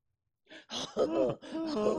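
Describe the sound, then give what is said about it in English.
A voice mimics coughing and choking: a rough, breathy hack, then strained, croaking gag sounds with a rising-and-falling pitch, loud and continuous, with no words spoken. “He's coughing. He's choking. He can't breathe.”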